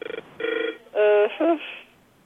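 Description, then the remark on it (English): A telephone rings in a hotel with a short electronic melody: a quick burst of pulses, then several sustained tones and a bending note, fairly loud, fading out at the end. “Is someone calling on the phone, or what does that sound?”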